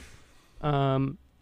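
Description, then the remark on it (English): One loud, voiced sneeze lasting about half a second, a strong tonal burst that cuts off sharply, with quiet breathy noise before it and a short sound right at the end. “Bless you.”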